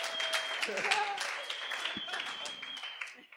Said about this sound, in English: so give them a clap. Keep it going. Come on, keep clapping.